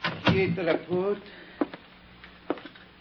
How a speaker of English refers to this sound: She motioned silently and then turned away. I stepped inside and closed the door.